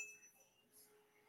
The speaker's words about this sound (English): Oh, I was going to ding the bell.